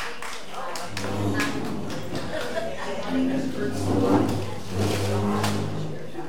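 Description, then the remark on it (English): A thin, scattered round of applause for the people who brought the goodies: sparse, uneven claps from a small group, with murmuring voices and a steady low hum underneath. “Let's a round of applause for the goody bringers today.”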